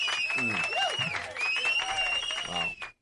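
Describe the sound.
Dense, steady applause that fills about three seconds, with voices mixed in and a high, sustained whistling tone riding over the clapping before it cuts off abruptly.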